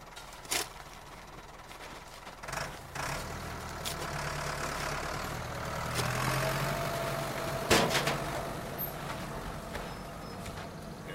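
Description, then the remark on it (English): A gun truck's engine idles steadily throughout, a low continuous rumble with a few sharp clanks and knocks breaking in now and then. “The gun truck's waiting for us.”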